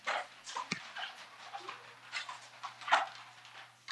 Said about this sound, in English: I think it's in my dog room. You want to see my dogs?